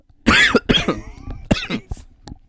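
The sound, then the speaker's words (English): A person with a bad cough coughs several times in close succession, loud and harsh bursts, followed by a shorter cough and a faint throat sound as it trails off. “Sorry. No, I have a bad cough.”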